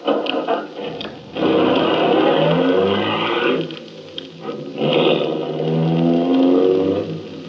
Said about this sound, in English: I looked again at the limousine. An official car of the MVD. Trying to be as casual as possible, I went over and looked in. The ignition keys were there. I got in quickly, stepped on the starter.